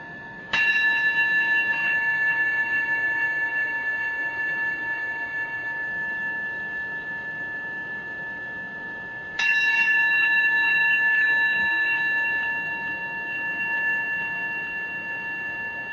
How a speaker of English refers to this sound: And we'll begin our meditation period by listening to the sound of the bell, receiving the sound of the bell.